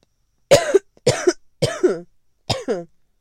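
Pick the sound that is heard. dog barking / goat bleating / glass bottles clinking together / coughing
coughing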